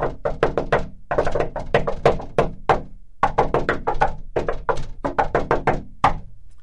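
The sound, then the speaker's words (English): A rapid, patterned coded knock on a wooden door, grouped into bursts with short pauses between them, fairly loud with no voices. “I must give the countersign.”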